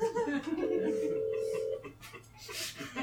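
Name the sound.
telephone being dialed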